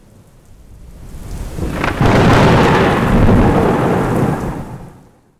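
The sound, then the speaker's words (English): A loud roll of thunder swells and rumbles for several seconds over steady rainfall, building from a soft patter to a broad, deep crash before fading away. No voices are present. “So as we mentioned at the top of the show, that thunderstorm means we're going to get our mystery topic.”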